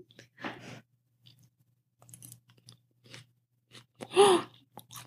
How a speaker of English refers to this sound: The water chestnut crunch. I'm eating. How does this sound? Sounds delicious.